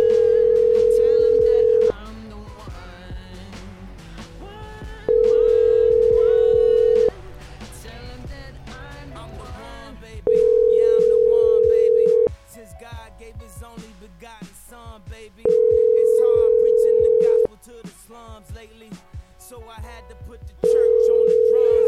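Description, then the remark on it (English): An outgoing phone call, a repeated attempt to reach someone, rings five times, each steady two-second tone followed by a pause of about three seconds, with faint voices and background noise murmuring in the gaps. “Sometimes they pick up on the third attempt.”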